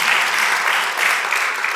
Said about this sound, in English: Yeah, God is good. You can applaud that, because it sure wasn't me.